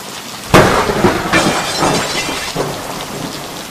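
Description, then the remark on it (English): A sudden, loud thunder crack bursts out during a storm, then rolls into a rumbling decay over steady, heavy rain pattering down. No voices are present. “I'm right in the middle of the storm, so there should be another thunderbolt any second now.”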